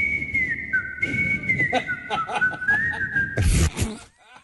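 A person whistles a slow, clear melody, the pure tone gliding and stepping between notes for about three seconds, with faint background sounds underneath, before a sudden loud burst of noise cuts in.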